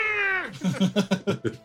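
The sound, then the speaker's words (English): A worn-out smart gun with a worn-out motor fires: a high, cat-like screech slides downward in pitch, then breaks into a rapid stutter of about six rough, grinding bursts, loud. “Sounds like a cat on a cheese grater.”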